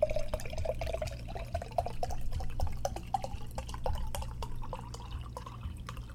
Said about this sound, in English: I just poured a full mason jar full of wine.